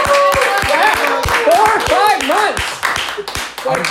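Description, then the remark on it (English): A small audience at a stand-up comedy show claps in a steady rhythm, the sharp claps loud, while excited voices whoop and call out over them throughout. “You got good. You got clap.”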